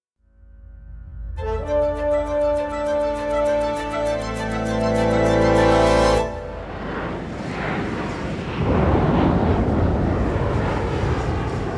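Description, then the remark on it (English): A passenger plane flying south over Washington State on November 24th, 1971, drones with a steady, whining engine hum, then gives way to a loud, rushing roar of thunderstorm wind, rain and hail around the aircraft, with thunderclaps. No one speaks. “Outside, a storm rages. Hailstones pelt the cockpit window. Thunderclaps make the aircraft shudder and lurch.”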